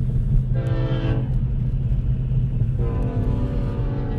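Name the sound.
train passing with horn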